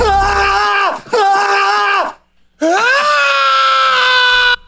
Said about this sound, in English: The stupid Tom Cruise scream. The Tom Cruise scream, yep. From that stupid mummy the movie.